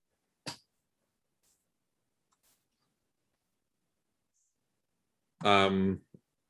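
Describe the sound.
A voice imitates a creature in a role-playing game clicking at a character: one sharp click, a long silence, then a brief buzzy, rattling throat sound with a final tiny click.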